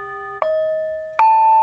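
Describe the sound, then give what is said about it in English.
Metal prayer bowls (singing bowls) struck in turn, each strike a soft attack that blooms into a pure, sustained ringing tone with shimmering overtones, the second bowl entering while the first still hums. “Oh, those are the prayer bowls.”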